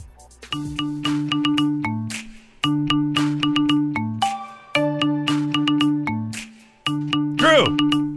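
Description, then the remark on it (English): A ringtone version of a popular song: a bright, synthesized melody with a punchy bass riff, looping its catchy phrase about three times, loud, ending with a quick swooping tone. “This is a popular song. I think this one is a dead giveaway, but let's see who gets it first.”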